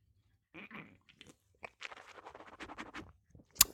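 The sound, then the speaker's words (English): Someone takes sips of a Celsius energy drink, a series of short wet, crackly slurping noises over a few seconds, ending in a sharp louder click, with no talking. “Drinking one right now on the show.”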